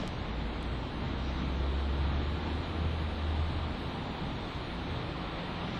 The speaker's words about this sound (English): It's clear to me that the sounds of the cars outside are not me because I'm over here listening to the sounds.